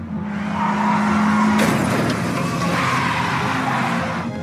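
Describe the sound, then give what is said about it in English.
A car engine roars with tires skidding, then a sudden sharp crash hits around the midpoint as Maura Murray crashes her car, followed by continued rumbling and scraping noise. Loud, with no voices. “she crashes.”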